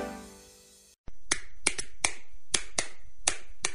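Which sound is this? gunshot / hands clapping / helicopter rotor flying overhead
hands clapping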